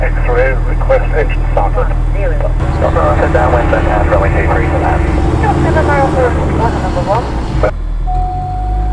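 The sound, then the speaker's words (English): A light aircraft engine drones steadily and loudly, a constant low rumble heard from inside the aircraft, while people talk over it almost throughout; the engine has been started outside Hangar 1 at Cambridge before a flight. “I'll fly the aircraft.”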